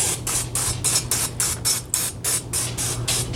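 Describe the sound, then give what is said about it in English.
Cooking spray hisses from an aerosol can onto a grill plate in a quick series of about a dozen short, evenly spaced bursts, fairly loud, over a low steady hum. “I just have cooking spray. They want you to do that so you have a nice quick release when taking things off the grill. I'm going to spray it.”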